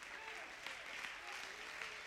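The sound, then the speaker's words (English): A crowd claps steadily in dense, continuous applause, bright and fairly loud, with a few sharper individual claps standing out and faint voices mixed underneath. “Somebody clap your hands if you.”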